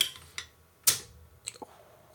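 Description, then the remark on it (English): A few light metallic clicks, then a sharp pop of a bottle cap pried off with a church key, releasing a brief bright fizzy hiss, followed by two small clinks. No one speaks. “I'm going to crack this open, and I do need a church key to do this.”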